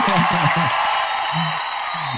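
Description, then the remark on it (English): A crowd claps steadily throughout, a dense, loud wash of applause welcoming a guest, a sports agent and former U.S. national team player, while voices talk or call out over it in short bursts. “Give a big round of applause, please, for super agent, former U.S. national team player.”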